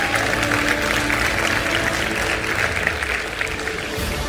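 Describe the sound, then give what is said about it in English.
Audience applause for a speaker talking about leadership fills the whole stretch, a steady dense wash of many hands clapping at an even loudness with no voices on top, easing slightly right at the end. “You can clap for that, because let's go.”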